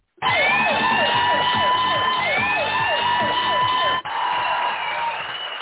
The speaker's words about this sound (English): That's my buzzer.